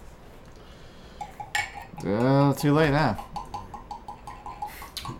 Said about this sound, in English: I have the gain on the mic turned up so high they hear every last bit of this thing. Every time we slam a glass down on the table, they hear it.